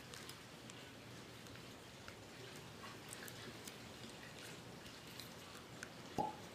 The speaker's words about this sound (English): Let's give it a pour and see what it smells and tastes like.